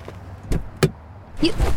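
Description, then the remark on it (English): A car door clicks open and then thumps shut as a person moves into the front seat, two sharp knocks about a third of a second apart, followed by a short burst of shuffling movement. “All you did was move up to my front seat. You really need to lock your doors.”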